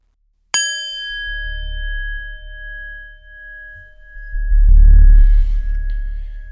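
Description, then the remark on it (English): A meditation bell is struck once to begin a seated meditation and rings out with a clear, sustained tone that lingers for several seconds, over a low rumbling background that swells partway through. “And at the sound of the bell, we will begin.”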